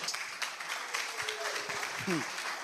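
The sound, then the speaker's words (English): A church audience claps steadily in a dense, continuous patter, with a brief vocal exclamation rising over it near the end. “Hey, if you are clapping, clap. I didn't tell you to clap.”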